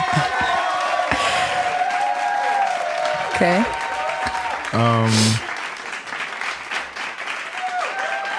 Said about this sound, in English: Well, let's have a round of applause for a great job.